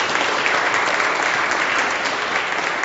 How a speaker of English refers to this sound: Okay. Very good. I wanted you to remain standing during the applause, but that's okay. You can sit down now.